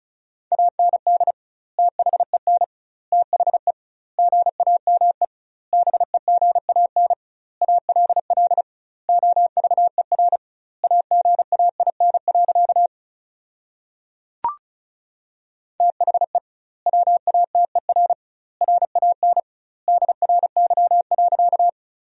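Rapid Morse code at 35 words per minute with doubled word spacing, sending sentences built from the 500 most common words: a single steady mid-pitched tone keyed in quick dots and dashes, grouped into words with short pauses, interrupted once by a sharp click and a longer gap.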